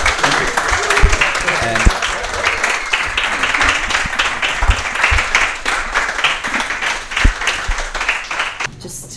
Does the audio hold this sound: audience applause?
yes